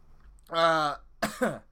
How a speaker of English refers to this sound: I'm literally coughing on the mic. I don't normally do that. Sorry.